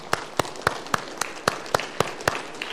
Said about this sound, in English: and you need a big round of applause for that. You see? Come on. Come on.